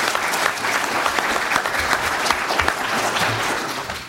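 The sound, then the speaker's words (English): A crowd applauds all of the school board candidates steadily for about four seconds, a dense, even patter of many hands clapping at a constant loudness that eases off slightly at the very end. “Let's have a round of applause for all of the school board candidates.”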